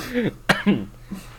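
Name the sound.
cough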